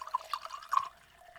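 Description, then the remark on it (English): Whiskey poured into an Uncle Nearest glass: a few quick, bubbly glugs in the first second, then a faint trickle that fades out. Quiet overall, with no talking. “And I'm gonna pour it into my Uncle Nearest glass.”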